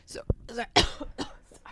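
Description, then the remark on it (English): A woman coughs a few times, two sharp, loud bursts standing out, with rough breathy vocal noises filling the short gaps between them. “Wait, oh God, all the listeners are going to be like, oh my God, can I get, she coughed into, we're not allowed to cough anymore.”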